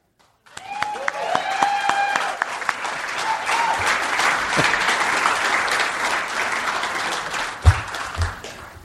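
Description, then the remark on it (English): An audience breaks into sustained applause as the defendant, T.J. Miller, is called to the stand at a trial on stage, a dense wash of many hands clapping that swells quickly and holds steady, with a few cheers and whoops rising over it early on. “Been to a trial where they applaud when the witness comes on stage.”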